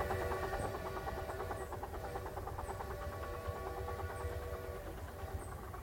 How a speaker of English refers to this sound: you know, right when the train just went by again, it's squeaking, it's blowing.